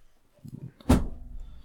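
A stool topples over with a short scrape, then lands in one sharp, heavy wooden clatter, its low thud fading quickly into quiet. No one speaks.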